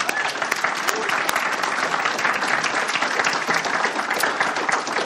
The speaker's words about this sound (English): I just want to give our volunteers a round of applause.